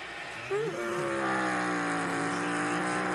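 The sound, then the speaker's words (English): Loud roar of race car engines at the green flag, climbing in pitch as they accelerate into turn one, then settling into a steady, dense, high-revving drone with several engines overlapping. “And green flag in the air. 50 out of nowhere to the green. Into turn one.”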